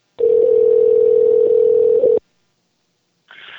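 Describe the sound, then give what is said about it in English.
A steady, mid-pitched telephone ringback tone sounds for about two seconds, then falls silent before the next ring starts, on an outgoing call placed at 8:23 p.m. on October 13th. “Let's see if we can get a hold of him for the first time today.”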